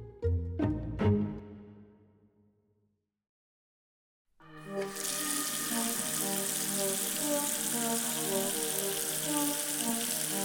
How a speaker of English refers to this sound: The water feels cooler than you remember as it splashes across your face.